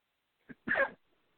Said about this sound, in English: I'm sorry, I've got a cough.